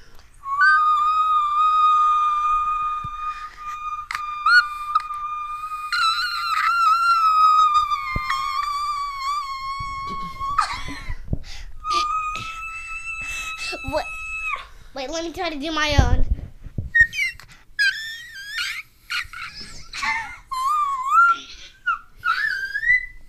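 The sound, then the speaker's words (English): Very high, thin whistle-register vocal tones, long sustained pitches and quick chirpy glides like birdsong, sung with brief spoken words in between. “These is kind of like head voice, but you know, we're gonna peek into the whistle register here.”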